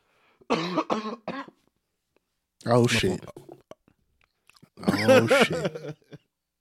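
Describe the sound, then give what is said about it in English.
A person lets out three loud, throaty coughing bursts, each lasting about a second, with short silent pauses in between. “can't even cough the same way.”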